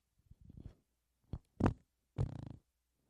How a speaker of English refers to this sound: I just farted into my microphone. Why did that? My mic don't stink, but it do stink in here.